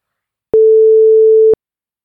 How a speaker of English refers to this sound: Okay, I think it's time I took a short break. You're going to hear a tone, I'm going to have a break.